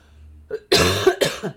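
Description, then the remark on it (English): A person who has been coughing for three weeks lets out a couple of harsh coughs in quick succession, the first one longer and rougher, the second following after a brief pause. “I'm glad I'm still coughing, week 3.”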